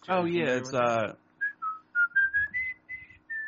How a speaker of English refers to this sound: So that, you know, they have, you know, they're whistling. They're whistling a great song. There's no question about that.